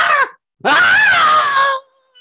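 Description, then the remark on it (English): A man performs a loud, strained cry of pain: a short yelp, then a longer wavering scream that trails off, voiced as a dramatic imitation rather than real injury, for a character who drops onto a table bleeding out after his legs are cut off by a greatsword. “And he drops onto the table, bleeding out, yelling out in pain.”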